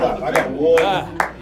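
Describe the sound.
One person claps three times at a steady, unhurried pace, each clap a sharp, bright smack heard over a murmur of voices in the background.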